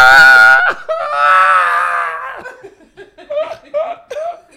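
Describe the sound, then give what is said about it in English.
A voice lets out a loud, shrill imitation of a horror-movie scream, held for about two seconds with a break in the middle, then dissolves into short, choppy bursts of laughter. “It was a scream, like a horror scream.”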